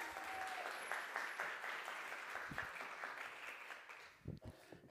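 A crowd claps steadily for several seconds, a dense wash of many hands applauding at moderate loudness, thinning slightly toward the end.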